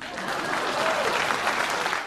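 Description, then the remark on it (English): A steady burst of applause from a crowd, dense and even throughout with no clear individual claps standing out, moderately loud and sustained for a couple of seconds. “No laughter there. Please clap.”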